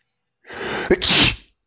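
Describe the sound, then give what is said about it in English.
A single loud sneeze: a breathy intake builds for about half a second, then a sharp burst of noise that quickly trails off, heard on its own with no talking. “Excuse me. Bless you.”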